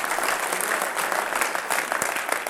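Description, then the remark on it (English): An audience claps steadily, giving God a hand clap, many hands blending into a dense, bright wash of applause that holds at an even loudness throughout, with no voices rising above it. “Would you give God a hand clap tonight for being so good?”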